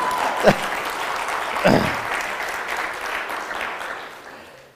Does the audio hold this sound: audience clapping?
yes